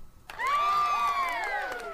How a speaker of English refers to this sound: Let's give a cheer and then a chime.